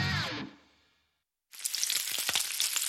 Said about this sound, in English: Hear that? Sounds like sizzling bacon, right? Trust me, it looks like bacon too. Only it's not. It's Johnsonville sausage strips. Strips of sausage in amazing flavors like maple and chorizo.